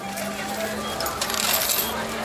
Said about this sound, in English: … created this soundscape of the hustle and bustle of the Shinjuku station in Tokyo.